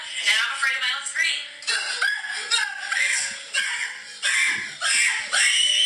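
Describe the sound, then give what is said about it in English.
Several voices scream loudly and continuously in overlapping high-pitched bursts, intense, with brief dips between waves and a few laughing, snickering sounds mixed in. “Let me hear these screams.”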